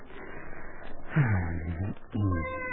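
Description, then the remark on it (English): A cat lets out two drawn-out, wailing meows, the second starting after a short pause, over a faint background hiss with no talking. “Now, what happened to the cat?”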